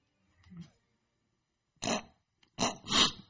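A soft, low throat rumble, then a short harsh cough followed by a longer, raspy two-part cough as the throat is cleared. No one speaks.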